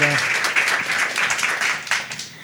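An audience at a panel discussion about food breaks into sustained applause for a departing panelist, a dense crackle of many hands clapping at once, loud and steady throughout with slight swells, and no voices rising above it.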